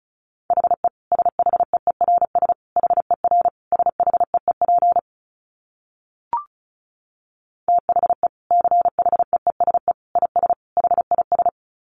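A single steady mid-pitched tone keyed on and off in rapid dots and dashes, Morse code at 35 words per minute, sending in two bursts separated by a pause with one brief click.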